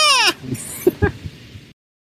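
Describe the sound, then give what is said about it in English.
A single loud, shrill goat scream with a quavering, falling pitch, lasting about a quarter second, followed by a few softer low thumps and muffled noises. “Yeah, it was a wild ride with screaming goats.”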